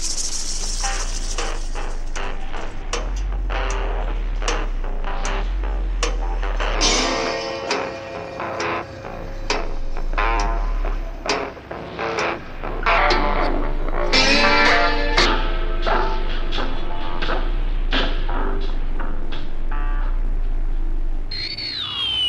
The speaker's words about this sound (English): That was weird. Shh. Listen, there's a voice hidden in the static.